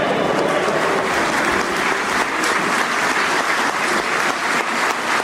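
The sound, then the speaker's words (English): A crowd claps steadily and loudly for the whole stretch, a dense wash of many hands with no voices standing out above it. “So yeah, everybody's around clapping.”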